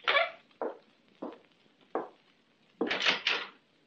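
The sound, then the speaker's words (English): A door being opened: a few separate sharp thuds spaced about half a second apart, then a louder, rattling clatter near the end, with no voices. “Answer the door.”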